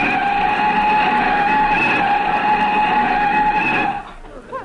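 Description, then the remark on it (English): A loud, sustained tire screech lasting about four seconds, high and steady with harmonic whine, as a car brakes hard and skids to a stop, then cuts off abruptly. “Mr. Benny stepped on the brakes.”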